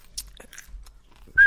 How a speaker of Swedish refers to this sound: Det där, det var inte jag som sa det. Det var jag som visslade.